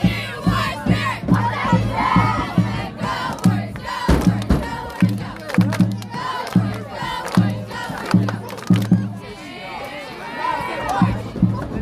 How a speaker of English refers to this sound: It's homecoming here in Wayland, Iowa. And boy, did the crowd have a lot to cheer about.